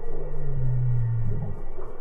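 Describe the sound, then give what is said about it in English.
A deep, resonant whale call, responding to a person singing from a boat amid ice in cold waters, slowly sweeps downward in a long low moan, loud, over a steady murky underwater hum. “And then the first whale is reacting. And it's like this really deep sound.”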